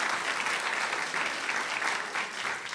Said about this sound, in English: We're broadcasting today from the Knight Studio at the museum in downtown Washington. That's what you're supposed to be applauding. Go for it.